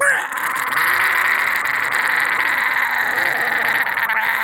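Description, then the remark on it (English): A loud, harsh demonic screech held steady for about four seconds, raspy and high-pitched, with no pause or break in intensity. “How, hear me out, how logically could you host the forces of hell if no one's around to screech at the new guys?”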